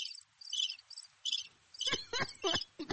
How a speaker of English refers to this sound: That sounds like a bird, girl. Not crickets. I don't know. Those are weird sounding crickets.